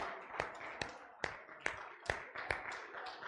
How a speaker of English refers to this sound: All right, let's give the Lord another hand clap of praise while you make your way back.